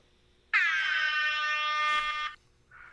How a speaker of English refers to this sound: Did you guys hear that? Oh, yeah. I'm here to kick the podcast up a little bit. There's gonna be lots of air horn tonight.